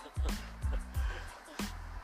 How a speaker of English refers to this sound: Okay, that's just a sorry for the noises, guys. There's so many cars right now.